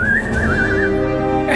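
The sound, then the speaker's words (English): A broken whistle is blown, giving a thin, wobbling tone that warbles unsteadily in pitch for under a second before dying away, set against a steady droning background. “Oh, what is wrong with your whistle? Oh, you broke it.”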